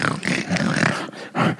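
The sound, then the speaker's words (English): A loud, raspy hog-calling contest call: a person bellows a long, roaring, growl-like cry, breaks off briefly, then lets out a second short, strained burst. “That she's like, that wasn't a pig call. That was something else.”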